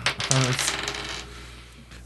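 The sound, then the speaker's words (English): Dice rolled for initiative in a tabletop game clatter across a hard tabletop, a quick burst of bright rattling clicks in the first half-second that tapers off as they settle. No one speaks. “So let's get initiatives rolled.”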